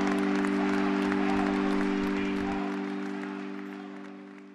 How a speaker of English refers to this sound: Applause broke out once again as his coffin was taken away, with many shouting, "Saint now."